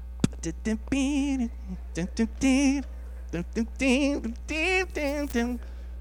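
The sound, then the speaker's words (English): A man hums and vocalizes a lively melodic riff in short, bouncy phrases, his voice imitating a guitar line, with a steady low electrical hum underneath. “And then I start to hum it to her.”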